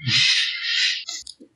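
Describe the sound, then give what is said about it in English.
A crow gives one long, loud, raspy caw lasting about a second, followed by a couple of shorter, clipped croaks, with no talking. “Doom birds.”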